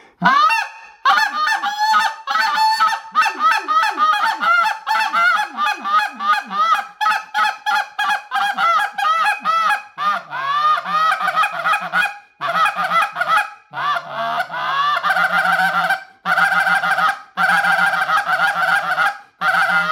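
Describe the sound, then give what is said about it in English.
A goose call blown in a rapid, continuous series of loud, high-pitched honks with sharp cracking breaks, sustained for the whole stretch. It imitates wild geese, with no talking. “But this call, or when those geese are way up there and you want to get that high pitch and that high crack that will carry a long ways.”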